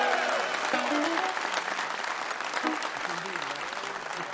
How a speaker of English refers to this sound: Let's give him a big round of applause, huh?